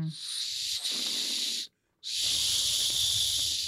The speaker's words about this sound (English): Okay, that's the maybe whistle. Not 90% of the time, I guess. Or is it a dog whistle?